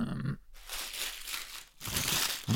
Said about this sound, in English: This is really nice wrapping paper. It's loud. Yeah, it's. I asked them, do you have any wrapping paper that's super loud? Hmm. And they. They didn't have any that talked, but they got crinkled. Wrapping paper that crinkles really loud.